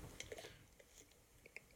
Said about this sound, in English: Hear me swallowing? Sometimes I swallow loud.